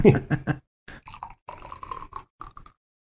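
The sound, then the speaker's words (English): Thunder Funk double IPA beer is poured into a glass: a few hollow glugs at first, then a run of shorter gurgling bursts before it falls silent. “Nice sounding pour there.”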